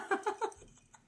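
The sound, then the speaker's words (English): Three quick, wet slurps of a drink in a steady rhythm, each a short squeaky suck of liquid, followed by a quieter tail with a faint final sip. “I'm like slurping this right down.”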